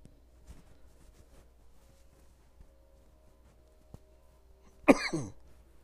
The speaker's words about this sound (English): Whoa. That was like a built-in cough from earlier. It just popped up finally.